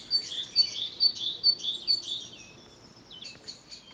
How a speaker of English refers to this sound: So she just sat in her balcony and gave us these beautiful bird sounds.